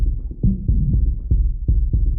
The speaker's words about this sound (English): I mean, I think I played it cool, but my heart was beating fast as hell.